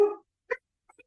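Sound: dogs barking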